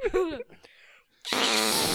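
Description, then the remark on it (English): A loud, sputtering fart noise made by squeezing air through cupped hands bursts in after a brief vocal sound and a quiet pause, buzzing steadily until the end. “Why can't you make a fart noise? I need both hands.”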